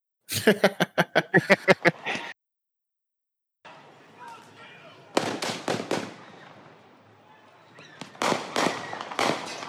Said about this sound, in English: Oh, that guy with the handgun shoots at him.